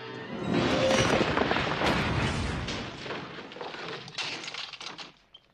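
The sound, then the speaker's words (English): A heavy crashing smash as Superman breaks a door off in a Superman film scene with Gene Hackman, with splintering and clattering debris that rumbles on for several seconds before fading out. No one speaks. “He smashes the door off the thing.”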